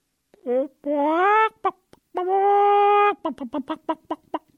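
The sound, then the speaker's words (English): A hypnotized man imitates a clucking chicken on command. He starts with a few rising squawks and two long drawn-out cackles, then finishes with a quick series of short clucks, loud. “Cluck like a chicken for me,”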